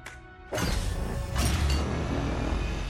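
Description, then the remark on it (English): A metal filing cabinet drawer rolls open with a sudden grinding rattle, a second heavier scrape and low rumble as it slides further, fairly loud with no voices. “Filing cabinet? Isn't that a little old school? It's our unsolved cases file. A drawer for each hero.”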